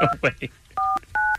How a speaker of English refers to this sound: So let's call this phone number and find out.